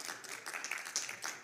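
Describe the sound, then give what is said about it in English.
A crowd applauds steadily for Battleford's community players, a community theatre group in Battleford: a dense wash of many overlapping claps with sharper individual claps popping out here and there, fairly soft and with no voices. “Round of applause for Battleford's community players for doing what they do.”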